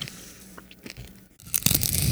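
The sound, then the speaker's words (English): A crisp crunch as a frozen ice cream snack wrapped in a fruit roll-up is bitten, followed by a burst of loud chewing and crackling, with audible breathing mixed in. “I mean, it's just like the breath was louder than the crunch.”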